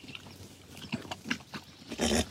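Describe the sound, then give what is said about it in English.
A newborn filly named Sophie, just born to a mare named Mia on a hilly ranch outside Santa Cruz, makes her first sounds: a few short, breathy grunts and squeals, ending in a louder, rougher burst, with no talking. “I think that might be the first sound I've ever heard you make.”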